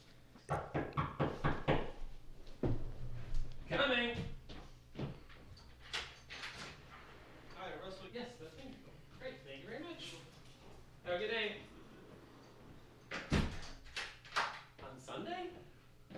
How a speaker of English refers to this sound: We're recording this on Sunday and you just had a knock on your door. Yes. Which was kind of freaky because we were talking about Lust.